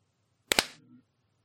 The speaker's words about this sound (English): But it's just a synchronized clock, and we're just all going to clap at the same time. 1 second. Let me find my time dot is. Okay. Should we clap at the top of the minute?